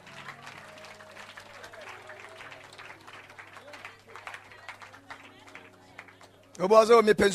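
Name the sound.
audience clapping hands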